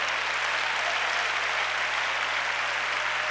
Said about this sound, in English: Well, that's about 25 people clapping their hands.